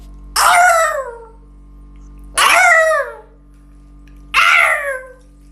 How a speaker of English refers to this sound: That's baby fox having sex, yeah.